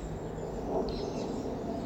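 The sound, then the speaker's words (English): Faint birdsong at allotments, including a parakeet and many small birds, a few thin high chirps rising briefly over a steady outdoor background hiss, with no voices present. “just trying to record some of the bird song at the allotments for you.”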